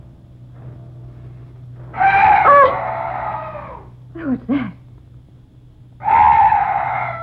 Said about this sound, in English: Oh, some night birds. Yes, that's all. Such a weird sound. I've never heard anything like it before.